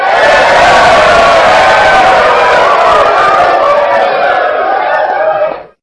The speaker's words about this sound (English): So I'm going to have to give that to my ladies right there. Let me get applause right here.